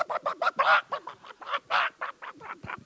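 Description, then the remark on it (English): A voice imitates a squawking chicken being pulled backwards by its tail feathers, letting out a rapid string of about a dozen loud, choppy clucks and squawks over a few seconds, with no other sounds around. “And I'd go out there, and them chickens start eating, and I'd get them by the tail feathers, and I'd pull them backwards. They go.”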